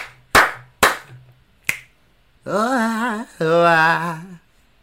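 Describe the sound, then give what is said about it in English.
Sharp, loud hand claps and a finger snap, given as a rating of a mouth-imitated trumpet, ring out in a quick, uneven sequence, followed by two long, wavering sung 'O-ah' vocal tones that rise and fall in pitch. “So I give it three claps, a snap, and a and two.”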